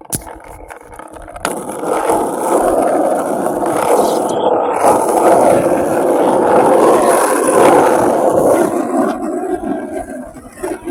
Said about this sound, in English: How the fuck does it sound like he's skating away from his microphone? Yeah. He's a skater. He is a skater. He's a skateboarder.